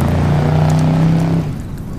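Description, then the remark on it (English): A small rental car's engine drones steadily as it climbs a winding mountain road at twilight, a loud sustained hum that strains along before easing off and fading slightly near the end. “before they knew it, they were driving their undersized rental up a winding mountain road at twilight.”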